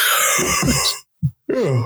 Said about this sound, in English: Sorry about all the yawning. My insides are slowly failing me.